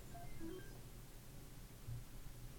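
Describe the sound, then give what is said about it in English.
A few short, faint electronic beeps at mixed pitches, clustered in the first second, over a steady low hiss and rumble with no one speaking. “Oh, God, the fucking beeps again.”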